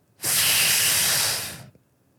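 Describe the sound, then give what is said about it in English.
A voice imitates a dog fart with one long, steady, airy hiss lasting over a second, loud and breathy, then tapering off into silence. No talking. “What's that make you think of with dogs? A fart? Yes.”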